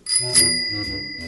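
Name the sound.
bell ringing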